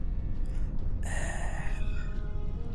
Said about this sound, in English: Gasping, you launch yourself back up through the surface and begin sucking for air. Over the combined racket of propeller blades and your frantic fight for air, you're certain you can hear shouting.